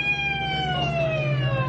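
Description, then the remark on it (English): An ambulance siren wails steadily and loudly, its tone slowly sliding downward in pitch over a low rumbling background, with no voices heard. “Let the ambulance through.”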